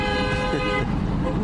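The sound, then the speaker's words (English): A loud, sustained car horn from a passing car blares for most of a second over a steady rumble of street traffic in Chicago, by a high school during a teachers' strike, then cuts out while the traffic noise carries on. “And then cars would come by. And Jesse Sharkey versus traffic.”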